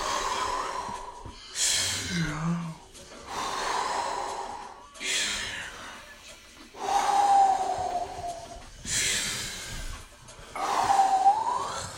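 Deep, forceful breaths in a breathing exercise, alternating inhales and exhales in a steady rhythm, about six breaths in a row with short gaps between, and no talking.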